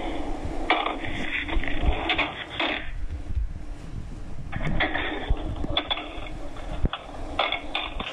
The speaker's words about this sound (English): Sounds like he's just throwing the phone and tossing it back and forth. They're real busy there, it sounds like.